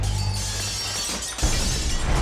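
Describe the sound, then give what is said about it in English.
Loud glass smashing as a mob smashes the windows of the Daily Record building on 7th Street in Wilmington on November 10th: a dense crash of breaking panes that continues for a couple of seconds with a fresh burst of shattering midway, with no voices. “Instead, they brutally smashed the windows and set the entire building ablaze.”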